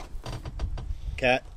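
A door is opened: a few soft rattling clicks from the handle and latch, then a brief, loud, high-pitched hinge squeak near the end.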